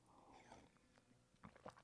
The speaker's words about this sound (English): Sip of coffee and let's pray.